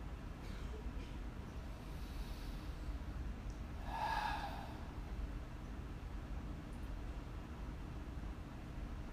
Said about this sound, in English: So while you're sitting in that feeling of space, I'm going to ask you to take 3 deep breaths. Breathing in through your nose, feel your body expand, and out through your mouth. Okay, everybody do this.